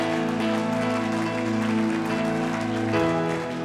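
A church audience claps steadily and energetically in praise of God over sustained organ-like chords, the applause forming a dense, continuous wash that shifts slightly near the end as the music changes.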